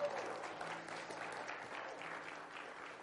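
An audience applauds steadily, a dense wash of many hands clapping at once that holds at an even level for the whole stretch, with no voices standing out.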